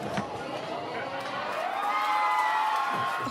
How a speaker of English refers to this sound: Yeah, well done. Round of applause.